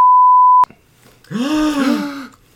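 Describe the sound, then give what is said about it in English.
A loud, flat censor bleep holds steady for just over half a second and cuts off abruptly. After a short pause, a drawn-out, wavering vocal groan follows. “We beep it.”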